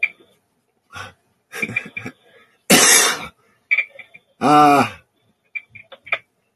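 A person coughs in irregular fits: scattered short hacks, one long harsh cough, then a raspy, voiced cough, with soft throat noises between and no talking.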